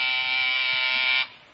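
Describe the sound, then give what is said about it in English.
A doorbell buzzer sounds in one loud, steady, harsh electric buzz lasting just over a second, then cuts off abruptly, leaving a faint hum. No one speaks. “Oh, see who's at the door, will you, dear?”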